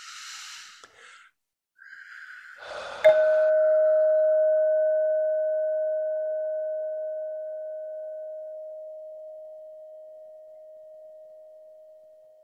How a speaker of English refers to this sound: I'm going to up the ante now. I'm going to flip the chime one more time.